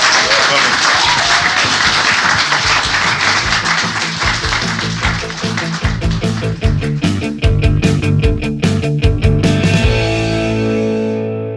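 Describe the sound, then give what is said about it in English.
An audience at the FyneFest 2022 panel discussions applauds the panel loudly and steadily for about eleven seconds, a dense, continuous wash of many hands clapping, with individual claps standing out toward the end before it tapers off. “Please give a huge round of applause to our panel.”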